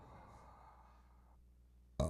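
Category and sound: human body sound, burp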